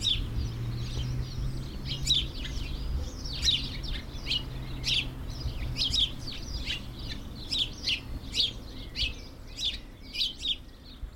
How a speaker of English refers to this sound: just listen to that bird song.